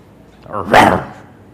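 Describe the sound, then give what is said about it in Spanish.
A person imitates a dog's bark with a single loud vocal bark that rises quickly and fades within about half a second. “Yo ladro porque lo imito.”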